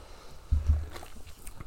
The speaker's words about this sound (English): Yes, let me get a sip.